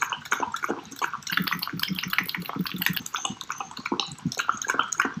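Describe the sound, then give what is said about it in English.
A dog laps up yogurt with quick, steady slurping licks repeating rapidly for several seconds and no voices present. “Obviously, the best is dogs drinking yogurt.”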